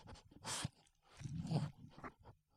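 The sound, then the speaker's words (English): A dog sniffs at the microphone: a run of loud, breathy snuffles and huffs in irregular bursts, with a few soft crunchy bumps and no talking. “he just sniffed the mic. He's wondering what I had for lunch. Sniffing the mic.”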